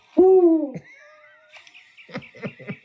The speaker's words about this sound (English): It's a real owl right there.